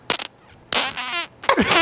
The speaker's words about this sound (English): Yep, and then the final fart, Axel Foley himself.